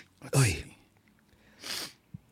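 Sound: sniffling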